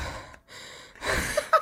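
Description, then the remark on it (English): A voice imitates creepy heavy breathing: two or three slow, breathy, airy inhales and exhales, with a brief pause between them, ending in a short gasping sound. “Of you breathing? That's a weird thing to film myself breathing.”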